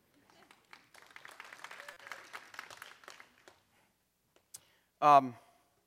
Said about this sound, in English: You can clap.